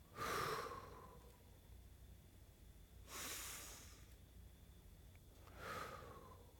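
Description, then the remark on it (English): Slow, deliberate breaths, three airy whooshes a few seconds apart with quiet pauses between them, and no talking, as a person begins a quiet breathing practice for prayer. “And then what I do is I'm quiet for about 15 seconds, and I begin breathing like this.”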